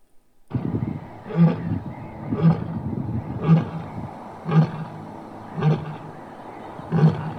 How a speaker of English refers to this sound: Sorry, just so you can picture this, we're going to play. This is the sound. This is the, in case you don't remember, this is the sound of a lion calling.